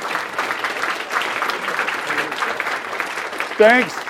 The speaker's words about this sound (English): So wait, let's give his dad a round of applause.